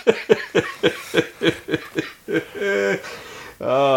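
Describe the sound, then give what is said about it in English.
A rapid string of about nine sharp, breathy bursts, a laugh that turns into coughing, followed by two drawn-out voiced wheezes as the fit winds down. “do we cut the show with my laughing cough?”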